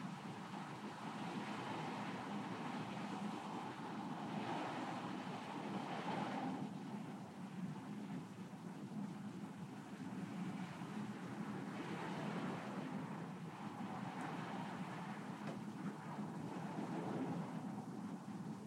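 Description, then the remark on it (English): Steady, dense rainfall hisses continuously outside on a rainy day, with a low rumble of distant thunder rolling underneath at moderate volume and no voices present. “So take a look inside and see what your motivation was for getting up out of bed and coming here on a rainy day.”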